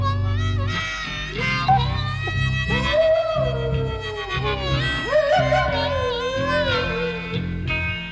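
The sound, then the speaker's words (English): A borzoi dog named Knobs howls in long, wavering, rising and falling tones over a steady harmonica and guitar backing, with a microphone held in front of the dog; the howls are loud throughout. “as their canine accompanist was not Seamus, but a borzoi named Knobs.”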